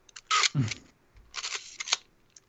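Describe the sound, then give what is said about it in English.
A Minolta AF film camera's winding lever ratchets with a scratchy mechanical rasp, then another longer wind and a crisp shutter click, with no talking. “Okay, I'll wind it on for you. There's my shutter.”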